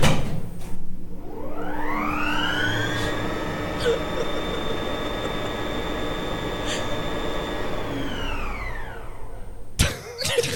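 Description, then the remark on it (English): A log elevator's motor whirs up like a vacuum cleaner, rising into a steady high-pitched whine with a low rumble beneath, then winds down and cuts out with a sharp clunk near the end. “It's a log elevator. Sounded like a vacuum.”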